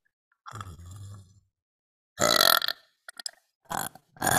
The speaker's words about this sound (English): Oh my. Burp sequence initiated.